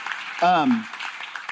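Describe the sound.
A church audience in New Braunfels claps for a guest in a steady, dense patter for about a second and a half, with a single voice briefly calling out over it in a falling tone partway through.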